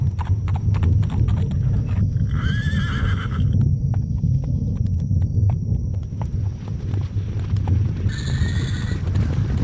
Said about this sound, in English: You're gonna get chased down by people on horses, so.